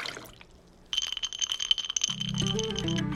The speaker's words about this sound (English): glass, ice, pour.